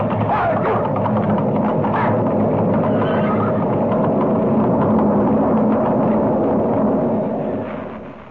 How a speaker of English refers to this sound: It's an avalanche, and we're right in its path.